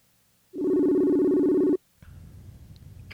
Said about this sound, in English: We're dialing. It's ringing. We got a ring. That's good. That's a good sign.